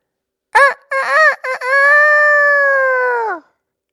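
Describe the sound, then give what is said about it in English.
A rooster crows loudly, a choppy opening of short bursts followed by a long, sustained harmonic note that trails off, with no other sounds around it. “Oh, I think that was a rooster.”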